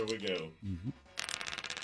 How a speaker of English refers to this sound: Roll the dice there, son.